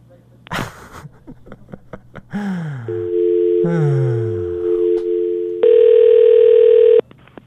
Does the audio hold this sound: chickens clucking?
no